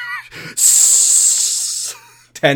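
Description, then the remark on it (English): About ten voices in unison imitate a snake with a long, loud, steady hiss lasting over a second, bracketed by brief bits of speech before and after. “Ten snakes.”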